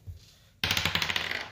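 Dice are rolled during a tabletop game and clatter onto a hard tabletop after a brief quiet moment, rattling and tumbling in quick bright clicks for about a second, fairly loud, with no voices.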